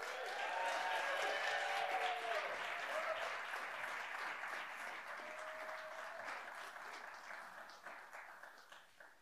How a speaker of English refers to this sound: So without further ado, if you just give a round of applause for Dr. Craig Blomberg.